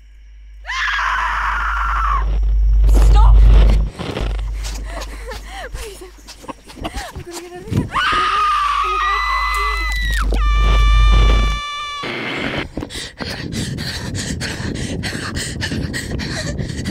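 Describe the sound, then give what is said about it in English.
Loud, high-pitched screams ring out in several bursts with wavering, strained tones, mixed with groans and gasps over a heavy low rumble, ending in a noisy, dense stretch. “Tell me you heard a scream.”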